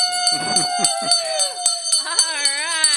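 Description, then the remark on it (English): A bell is struck once by a show host in honor of a phone-in caller, and its bright, sustained tone rings on with shimmering overtones while voices talk and cheer over it. “Okay, so that's one ring.”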